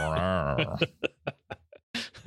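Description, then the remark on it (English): A person makes a drawn-out, growly vocal imitation of a tiger's roar, followed by several short, breathy bursts like quick chuckles, all fairly loud. “I'm gonna go tiger. Tiger. Rawr. Rawr.”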